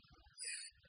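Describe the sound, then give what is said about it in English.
A single quick sneeze bursts out, a short breathy, hissing blast lasting under half a second, moderately loud, with only faint low background rumble around it. “Bless you.”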